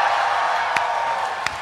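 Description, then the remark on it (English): A crowd cheering and whooping for the city of Austin, Texas, in a steady, loud wash of noise that holds for the whole moment, with a couple of sharper claps or shouts poking out of it. “You're cheering for a city that has this person in it.”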